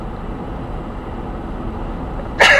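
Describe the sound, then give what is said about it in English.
A steady low rumble fills the background, then a single loud, sharp sneeze bursts out abruptly right at the end. “Bless you.”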